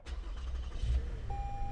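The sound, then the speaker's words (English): A van's push-button-started engine cranks and turns over with a deep rumble, then settles into a steady idle as a thin electronic tone sounds, with no one talking. “And of course, because of that, we get the great push to start moment that I know you love in the car.”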